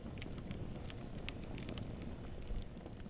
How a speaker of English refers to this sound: And, you know, for all of us to be around that first campfire and to have just went to that so casually, so naturally, and then the peaceful silence of just listening to the wood crackle.